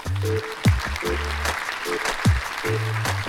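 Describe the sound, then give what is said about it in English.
A steady wash of crowd applause sound effect fills the whole few seconds, loud, with repeated short airhorn honks and falling whoops mixed in over the clapping. “Airhorn. Airhorn. Applause.”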